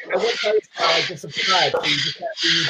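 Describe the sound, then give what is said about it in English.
A parrot downstairs squawks and chatters excitedly in five loud, raspy bursts separated by short gaps, the calls harsh and voice-like, filling the whole moment. “I have a parrot, and he's going crazy downstairs at the moment.”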